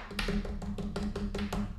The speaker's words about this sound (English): Drum roll, please.